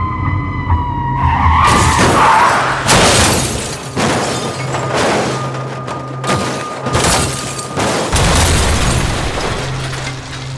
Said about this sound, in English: His car hit the curved pavement at 75 miles an hour, guided by cruise control, and flipped in midair.